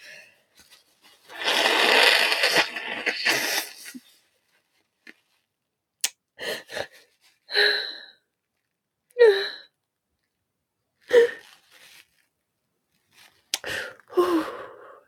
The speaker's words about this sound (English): I have so much mucus inside of my system right now. I'm going to blow my nose.